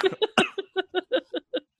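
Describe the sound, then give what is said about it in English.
A rapid run of about nine short, harsh coughs in a steady rhythm, one stronger burst near the start, with no talking around them. “I took a big, that was, you know, when you take a, and you can't stop coughing.”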